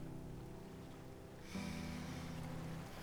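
Soft, steady wash of ocean waves, a low rumbling hiss that swells fuller halfway through as a new wave rolls in, quiet and continuous with no voices.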